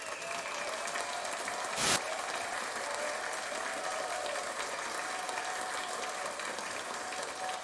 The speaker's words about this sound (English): I'm not even mad at it. I'm kind of like just like, let's give a round of applause for him, because you know.